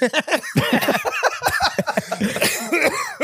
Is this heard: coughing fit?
yes